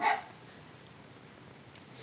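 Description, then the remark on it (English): A single short, muffled bark from household dogs sounds at the very start, then fades into a quiet stretch of faint background noise with no talking. “My dogs are barking.”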